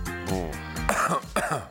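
A drawn-out, voiced cough that stretches into a raspy, throat-clearing rumble, followed by two sharper hacking bursts, fairly loud with no speech.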